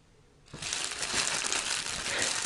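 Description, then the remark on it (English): The paper wrapper of a McDonald's chicken McGriddle crinkling and crumpling at breakfast, a dense, continuous crackle that starts abruptly after a brief quiet moment and stays loud and busy to the end. “That's the crumble of a McDonald's chicken McGriddle.”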